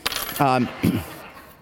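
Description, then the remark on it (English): A bunch of keys jingles with a bright metallic clatter for a second or so, fairly loud, with a couple of short voiced sounds mixed in before it fades. “Give me those keys.”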